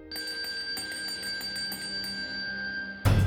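household object, bell ringing

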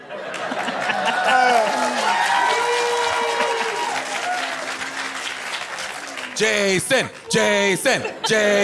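crowd, audience applause and cheering

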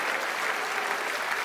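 sound effect, applause track sound effect

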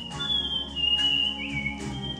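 human body sound, human whistling a tune

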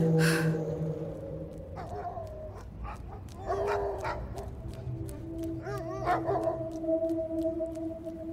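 animal, dogs howling and barking

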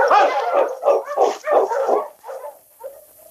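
animal, dog barking

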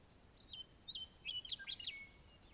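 bird, meadowlark song

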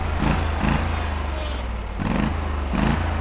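machine, lawnmower engine running

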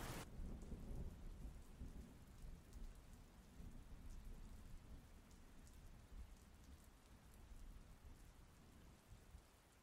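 nature, rain and thunderstorm ambience

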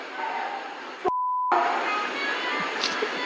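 signal or alarm, phone ringtone

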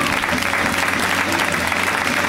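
crowd, comedy club audience applause

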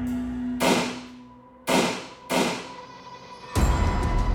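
sound effect, three gunshots

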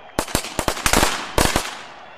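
sound effect, firecrackers going off

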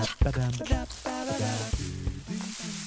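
nature, waterfall

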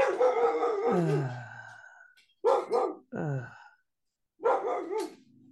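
animal, dogs barking

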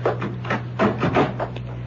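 household object, door being closed

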